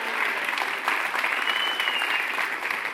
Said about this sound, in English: Why don't you just give him another round of applause?